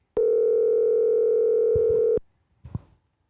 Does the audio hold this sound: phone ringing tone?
yes